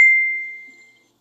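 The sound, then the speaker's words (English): A single high-pitched electronic beep from a device starts sharply and then slowly fades away over about a second, with no voices. “Thing beeped over here. Why's that beeping?”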